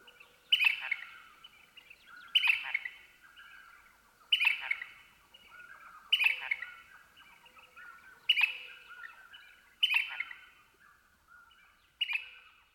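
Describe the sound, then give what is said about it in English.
At twilight, while it is still dark, a house finch sings bright, rollicking warbled phrases, repeated about every two seconds in a steady series of seven, fairly quiet and clear against a calm background, along with the distant toots of a western screech owl. “Another common twilight singer is the house finch, whose rollicking warbles are heard here, along with the distant toots of a western screech owl.”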